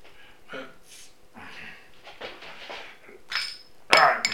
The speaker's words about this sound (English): Right, let's get the top off it. It's got a nice bottle cap. Let's get this cap off and get this beer into a glass.